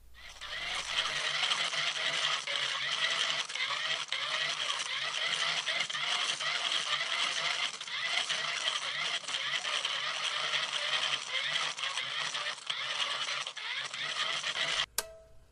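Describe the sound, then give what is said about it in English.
A hand crank is turned steadily for about fourteen seconds, giving a continuous, loud grinding whir with a faint repeating rasp, then stops with a sharp click. No one speaks. “But for now, more cranking.”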